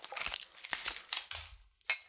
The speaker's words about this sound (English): So this is a fresh bottle. It's got clear shrink wrap. Let's pull this off. Oh, come on now. Always struggling with plastic. More. It is perforated. I just can't seem to tear it on the perforation. There we go. Got the little zip.